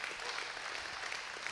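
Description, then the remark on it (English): Steady applause from an audience at a church in Newport News, given when the speaker invites clapping for the church's first pastoral hire, who oversees student ministries. A dense wash of many hands clapping at once, sustained at an even level throughout without any voices rising above it. “I know, come on, you can clap.”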